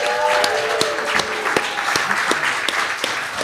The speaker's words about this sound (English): So can we get a round of applause for her?